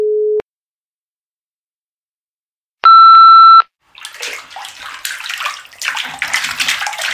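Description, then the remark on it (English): A short low beep and a brief electronic tone, then continuous splashing as feet slosh around in a bowl of water, growing busier toward the end. No one speaks. “I was feeling a bit left out, so I've put my feet in a bowl of water in order to get the feeling, you know, of being in Spain.”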